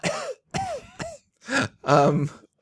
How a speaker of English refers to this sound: I prefer the cough.